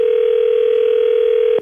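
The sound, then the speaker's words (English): A steady telephone dial tone hums at one constant pitch for over a second and a half, loud and unbroken, then cuts off abruptly with no voices present, as a call is placed from a radio station in Canada to the Tiger Truck Stop in Louisiana. “We're calling from a radio station in Canada.”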